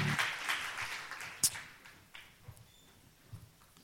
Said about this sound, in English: Why don't you clap your hands as you're seated? Amen.